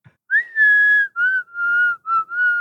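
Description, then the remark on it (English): A person whistles a short, fluty melody imitating a synth line: five sustained notes with small pitch slides between them, clear, with no talking. “I can't do it with my voice, but I'll do it. I'll try to do it with the whistle.”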